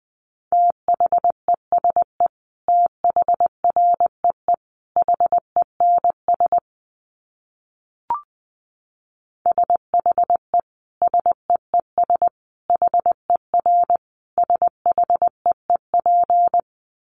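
Morse code sent at a brisk 20 words per minute: a steady mid-pitched tone keyed in quick dits and dahs, with a short pause and a faint click in the middle. No voices.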